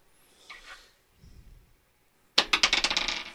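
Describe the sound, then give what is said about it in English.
Dice are rolled for a dodge, clattering across a hard surface in a quick burst of sharp, bright clicks that tumble and fade over about a second, after some soft faint rustling and handling sounds; the roll totals 5. “Can I dodge? Yes, roll.”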